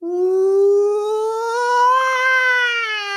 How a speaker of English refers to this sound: Somewhere in the distance, you hear that howling that you heard before.